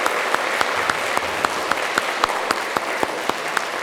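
A large church audience applauds the Lord during a morning service, a dense wash of clapping with sharper individual claps popping out at regular intervals, sustained and fairly loud throughout with no talking.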